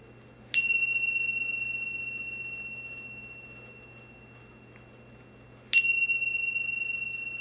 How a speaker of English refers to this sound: Taking two or three more breaths and listening for the sound of the bell to open your eyes.